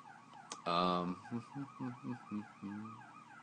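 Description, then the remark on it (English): A fire truck siren wails outside, opening with a loud, blaring horn blast followed by a series of shorter, pulsing honks over a steady rising-and-falling tone. “Can you guys hear the fire alarms? They're just like really loud to me apparently.”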